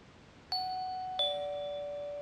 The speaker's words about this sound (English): The electric doorbell of the Blythe house produces the standard two chimes in a descending major third, F-sharp 5 to D5. The D, however, is some 30 cents flat of concert pitch.